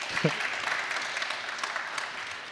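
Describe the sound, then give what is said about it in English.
A steady wash of audience applause, many hands clapping at once in a dense, even patter that holds at a moderate level throughout, with a brief murmur of voices near the start. “That sounds like people clapping for disappointment.”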